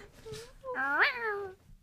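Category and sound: animal, cat meowing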